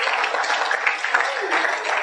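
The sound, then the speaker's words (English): An audience claps steadily for about two seconds, a dense, hissy patter of many hands blending into a continuous wash of fairly loud applause with no pauses. “Clap for me if you like my message.”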